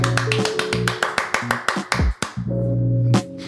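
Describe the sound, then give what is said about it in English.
A hand clapper noisemaker shaken back and forth, giving a rapid, steady series of sharp clacks over a low droning tone, then slowing and breaking off before a final burst. “It sounds like the hand clappers that you move back and forth.”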